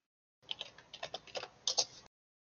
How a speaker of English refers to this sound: I'm hearing typing. That's not good.